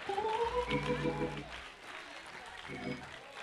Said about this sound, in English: I'm going to give you 30 seconds to give God a hand clap and open your mouth and tell him thank you.